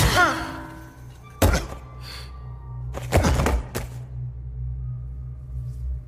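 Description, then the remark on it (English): A shovel, swung like a tennis racket with a strong right hand, strikes a person with a heavy, dull thunk, followed by a second thudding impact a moment later, loud over a low steady hum, after a brief vocal grunt. “I lift the shovel and...”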